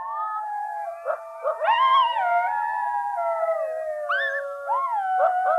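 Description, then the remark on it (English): Several coy dogs howl together at night in long, wavering, overlapping tones, rising and falling through the whole stretch with no pauses, a steady chorus with no talking. “There's just kind of this mystical noise at night that was this very haunting howling that was going on.”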